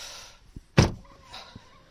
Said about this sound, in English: That's the rear window going back up again.